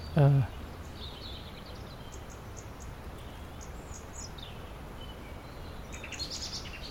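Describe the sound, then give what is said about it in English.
Two or more robins sing at once in thin, high, overlapping phrases that drift in and out over a steady outdoor hiss, with a brief low thump right at the start. “So far, I think we've got two or more robins. Quite a few robins, yeah. Singing to all each other.”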